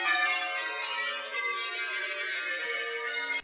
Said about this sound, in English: The St. Paul bells are the second largest ring of bells in the world.